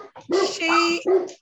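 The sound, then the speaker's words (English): Dogs bark loudly in three quick, yelping bursts, one drawn out into a high, strained whine. “Dogs are going off.”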